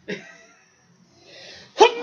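A short sharp sneeze bursts out, followed by a second loud sneeze near the end, with a quiet breathy pause in between.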